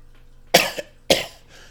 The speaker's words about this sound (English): Cough. I'm fighting the cold.